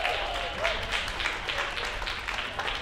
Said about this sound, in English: We're back, everybody. How's it going? I just want to say once again, how about a round of applause for Desmond Cole for being here?